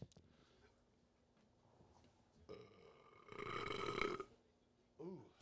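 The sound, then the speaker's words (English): A long, loud, croaking burp rumbles for about two seconds, swelling in the middle, followed by a short vocal sound. “Burp right there.”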